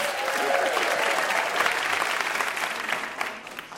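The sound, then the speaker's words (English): The audience of the show Ask Me Another bursts into a round of applause for VIP guest Keli Goff, dense steady clapping at a strong, even level that holds throughout before easing slightly at the very end. “And one more big round of applause for our VIP, Keli Goff.”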